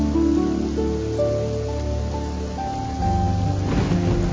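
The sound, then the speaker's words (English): Steady, soft rain hiss runs throughout beneath gentle sustained musical tones that shift slowly, with a low rumble swelling near the end; no one speaks. “Allow your senses to be filled with the scent of the rain, fresh pine, and honeysuckle.”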